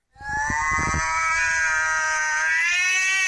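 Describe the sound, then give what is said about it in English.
A person lets out a long, sustained yowling wail imitating a cat, steady, with a few low thumps or rustles near the start. “Oh, neurotic feline.”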